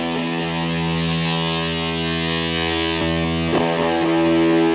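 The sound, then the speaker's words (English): A thick, buzzy electric guitar tone run through an Electro-Harmonix Micro Synthesizer pedal used in place of regular distortion, with a filter, plus a compressor and delay on the pedalboard; sustained and steady with dense harmonics, loud, with a few picked changes near the end and no talking. “And instead of like regular like distortion, I'm using the Electro-Harmonix, the micro synthesizer.”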